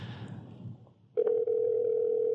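A steady, unbroken phone dial tone starts abruptly after a second of low rustling and holds loud until the end as a phone call is placed, with no voices.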